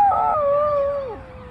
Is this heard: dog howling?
yes